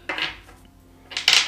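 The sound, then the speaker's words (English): Dice rattle and clatter onto a hard surface in two short bursts, a brief rolling skitter, a pause, then a louder, sharper clatter as they land. No one speaks. “Oh, wait, I'm using the wrong dice.”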